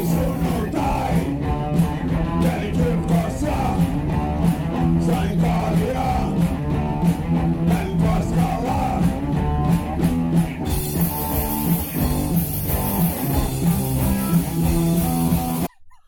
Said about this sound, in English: There's not very many people watching this, but the few people are like screaming that along with them.